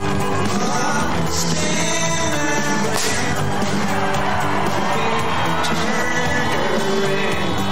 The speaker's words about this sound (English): But otherwise, for Biden and Harris, it was a flawlessly choreographed evening. Well, except for one moment, when a confetti cannon went off, and based on the candidates' reactions, it doesn't look like they were expecting it.